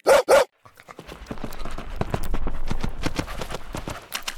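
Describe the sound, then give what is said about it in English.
A dog named Cheeky gives two loud barks, then a rapid flurry of scrabbling paw steps and knocks follows as it scampers around wearing a hat and glasses, with no one talking. “Cheeky is running around wearing Rory's favourite hat and glasses.”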